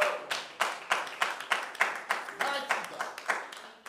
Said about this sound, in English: Give the Lord a hand clap.